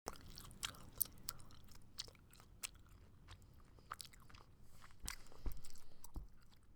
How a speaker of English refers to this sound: he has the ability to chew gum really, really loudly. It's one of those things that is so unbelievably noticeable, I can't believe it isn't the second thing people say